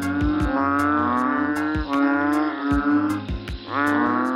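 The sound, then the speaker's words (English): Loud mating calls of male banded bullfrogs gathered in pools of water during monsoon rains: deep, drawn-out bellows much like a cow lowing, overlapping in a steady chorus with rhythmic throbbing pulses and no voices. “Once these heavy rains start, males convene in pools of water to call for potential mates. I've seen that call referred to as a cattle-like bellow.”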